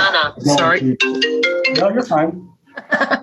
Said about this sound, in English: I forgot to turn the phone off, people.